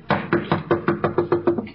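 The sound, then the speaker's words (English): A series of about eight firm knocks on a wooden door, evenly paced in a quick rhythm, with no voices. “I can just picture the expression on your face if you heard a knock on the door.”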